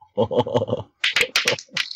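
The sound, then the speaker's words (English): Dice rolled in a game rattle and clatter in a quick burst of sharp, clicky knocks, a few hard taps tumbling irregularly, coming up a natural 20, after a brief low murmur at the start. “Come on, dice. Be better to me.”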